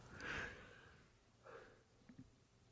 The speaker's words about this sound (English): You all right? I had to yawn. I'm sorry.